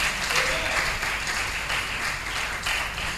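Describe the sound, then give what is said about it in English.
A crowd applauds steadily, a dense wash of many hands clapping at once, sustained and fairly loud throughout with no talking over it. “Oh, it's a good place to clap.”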